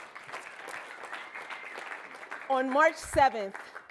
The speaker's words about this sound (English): My God, poets are amazing. Can y'all just give a round of applause real quick?